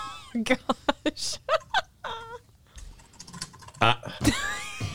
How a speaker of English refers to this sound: Oh, gosh. You're typing figures.